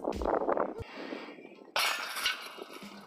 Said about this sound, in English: Banging chains.